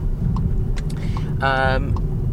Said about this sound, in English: So the Ateca alongside the Karoq, the equivalent age, the Maserati's going around again. It needs the practice. For another lap, it does need the practice, having been kept up with the Seat here.